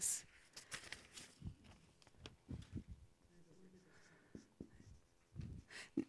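Papers being shuffled as someone looks for the right sheet, a run of soft, irregular rustles and crinkles with brief sharper flicks, fairly quiet and with no clear talking over them.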